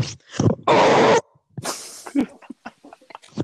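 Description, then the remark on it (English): A voice lets out a loud, harsh roar lasting about half a second, imitating Shrek roaring at Donkey, followed by a breathy rasping burst and a few short, quieter vocal sounds. “Shrek turns and regards Donkey for a moment before roaring very loudly.”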